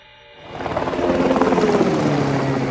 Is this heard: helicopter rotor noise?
yes